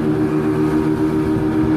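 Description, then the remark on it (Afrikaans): An NSRI rescue boat at Stilbaai accelerates on cold water in the dark, its engine roaring loudly in a steady droning hum with rushing water and wind noise layered over it, no voices. “Right, ons versnel nou hier op die boot en hulle het breë glimlagte om in die donker en die koue water te spring.”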